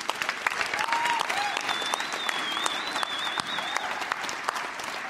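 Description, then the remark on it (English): A large audience in a gym applauds steadily and loudly throughout, dense clapping with a couple of sharp whistles rising above it partway through. “And you can applaud for that because that was that good.”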